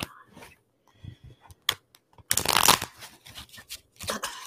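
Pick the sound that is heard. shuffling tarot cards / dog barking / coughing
shuffling tarot cards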